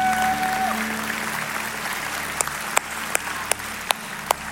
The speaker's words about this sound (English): Can we clap it up for our senior pastor? Come clap it up.